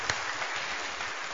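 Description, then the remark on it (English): A crowd applauds steadily for couples married over 50 years, a dense, even wash of many hands clapping at once with no pauses, holding a constant moderate loudness throughout. “We want to give them a round of applause, would you?”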